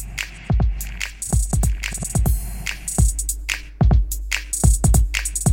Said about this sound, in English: Even just a touch like that is quite nice, because you can hear the clicks are actually going into that reverb and the echo.